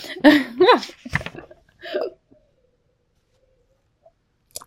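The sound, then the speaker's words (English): A few throaty vocal noises end in a sharp gulping swallow as a person drinks coffee, followed by a softer sound and then near silence with a faint click at the end. “I paused to drink. Did you hear the gulp?”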